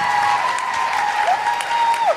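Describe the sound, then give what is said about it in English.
A Vancouver crowd at a tour show applauds loudly and steadily, a dense wash of clapping that holds at full strength for the whole two seconds, with a thin sustained whistle-like tone gliding through it. “Vancouver, could you give yourselves an enormous round of applause for coming out, getting through the snow?”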